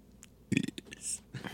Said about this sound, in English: Burps are extra.